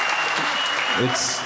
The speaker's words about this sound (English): This is great. I just sit here and I get applause. It's amazing.